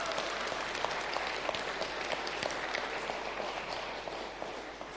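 A crowd claps steadily for several seconds, a dense, even wash of many hands with a few sharper individual claps standing out, holding at a constant level throughout with no voices, applauding the technical crew and the band after the last song at a church service.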